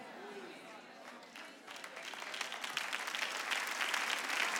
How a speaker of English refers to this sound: That's a smattering of applause, but I'm going to say it again.